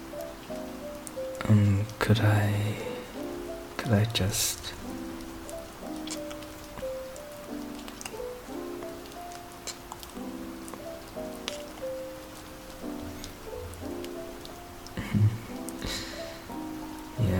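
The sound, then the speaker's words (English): Steady rain hisses throughout, with a soft patter of drops and a few louder splashes, while sustained tonal notes play over the top. “Let's get moving before the rain gets worse.”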